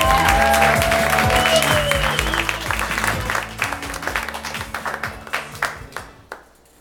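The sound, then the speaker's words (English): An audience at a live storytelling show in Los Angeles applauds in a dense, steady burst of clapping that thins into scattered individual claps and fades out over several seconds, with a few voices and whistles mixed in. “Applause, applause.”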